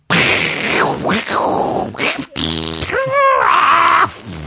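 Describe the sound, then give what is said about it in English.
A voice imitates snoring with loud, rough, rattling inhales and exhales, ending in a buzzy, wobbling snort that rises and falls in pitch over about four seconds. “No, that's classic snore.”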